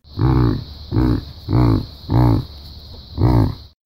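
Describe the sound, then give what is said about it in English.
A domesticated yak grunts five times in a steady rhythm, each low, throaty call lasting about half a second, fairly loud, with a faint steady high hiss in the background. “Instead of mooing like a cow, the yak grunts, although wild yak are usually silent. This is what a domesticated yak sounds like.”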